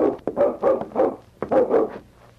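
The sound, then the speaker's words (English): A dog barks repeatedly in two quick volleys of short, sharp yaps, moderately loud, with no voices around it, as it looks out at a lake where a man is crossing. “I wonder what he's barking at.”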